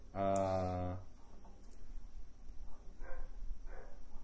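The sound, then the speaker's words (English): A dog lets out one loud, drawn-out bark, followed after a pause by two fainter, shorter barks. “Dogs are barking.”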